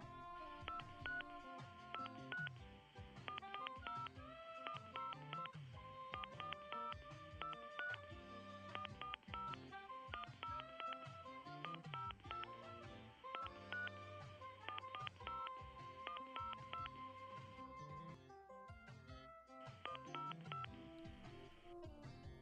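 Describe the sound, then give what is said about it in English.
A long, rapid run of telephone keypad tones as a number is dialed after the receiver is picked up, the beeps tumbling in quick, almost rhythmic succession, loud with no voices. “Now, I am dialing the number.”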